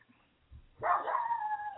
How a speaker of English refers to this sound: I'm thinking she doesn't know what she's barking at.